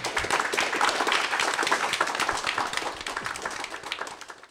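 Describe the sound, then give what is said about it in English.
A round of applause from many hands, dense steady clapping that holds strong for a few seconds before tapering off near the end. No voices are heard. “And so take me out with a nice warm round of applause for everyone.”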